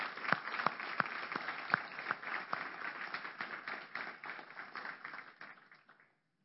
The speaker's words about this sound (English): But before I get started, can anyone who has served or is currently serving in our military please stand up? And if we can give them a round of applause.